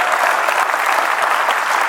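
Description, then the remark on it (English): A crowd claps steadily after hearing of a 26th wedding anniversary, a loud, dense wash of applause holding constant for a couple of seconds with no voices standing out. “And don't applaud.”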